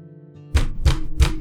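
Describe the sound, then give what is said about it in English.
Three heavy knocks on the door of a small cobblestone house land in a steady, evenly spaced rhythm, each a loud, deep thud with a sharp edge, over a faint low background hum. “And he'll lead you, like, kind of towards the southwest wall, and there's a small sort of cobblestone house there, to which he'll walk up and knock on the door quite heavily.”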